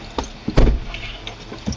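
A heavy truck door thuds shut amid shuffling and clunking as people climb into the truck in pouring rain, with a few softer knocks after and no talking.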